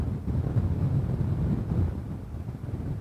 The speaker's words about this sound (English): And in the last half hour or so, we're getting some of the strongest wind gusts we've had since the bulk of the storm came through overnight. Somewhat surprising, but just goes to show exactly how big this storm was